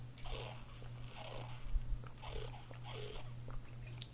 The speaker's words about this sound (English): Sorry, y'all. I had to take a sip of my water. My throat getting dry.